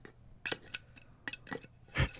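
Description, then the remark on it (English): Sharp metallic clicks and scrapes as a mason jar's two-piece lid is handled, a quick irregular series of bright taps ending in a louder clatter, with no talking. “The listeners, she's got a mason jar with the two-piece lid, like a radio show.”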